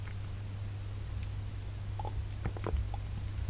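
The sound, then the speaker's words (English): A few soft, wet mouth clicks and slurps from someone sipping water at the mic, bunched near the end over a steady low hum, with no talking. “And I'm going to take another sip of water here because I want you to pause.”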